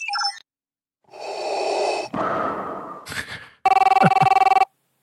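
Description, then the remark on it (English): A phone ringtone, the ring from The Matrix: a loud, rapid electronic trilling ring lasting about a second, preceded by a short chirp and stretches of breathy, hissing noise. No one speaks. “That's the Matrix ring.”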